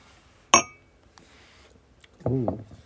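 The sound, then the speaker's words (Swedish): A single bright clink of glasses touching in a toast, ringing briefly before fading, then a short burst of voice shortly after. “Han ville vi skulle skåla.”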